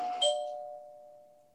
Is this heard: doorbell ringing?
yes